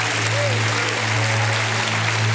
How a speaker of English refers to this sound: If you believe it, give God a hand clap and a shout of praise.